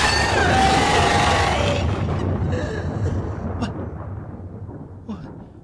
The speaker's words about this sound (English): What sound is that? Sound? The shriek of a dragon, my friend.